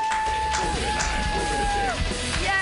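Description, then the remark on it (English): An audience at a stand-up comedy show claps and cheers after a comedian's New Year's resolutions set, dense steady applause with shouts and a long drawn-out whoop rising above it, continuing loudly throughout. “Keep clapping”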